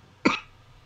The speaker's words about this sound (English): Excuse me, I'm a bit under the weather. I keep coughing.